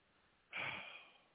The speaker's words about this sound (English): Here we go! Snoozing. Snoring hard, too.